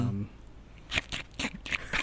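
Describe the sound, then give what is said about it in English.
Someone imitates a squirrel munching a cracker with their mouth: four or five sharp, crunchy bursts in an uneven rhythm, fairly loud, after a brief low hum at the start. “just a crunchy noise in the background. A squirrel eating a cracker.”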